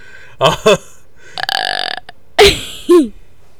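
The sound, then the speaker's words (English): A run of loud, croaking burps: two short ones, a longer drawn-out rasping belch, then two more quick gulping burps, rough and frog-like, with no talking. “Sound like a frog when I did that.”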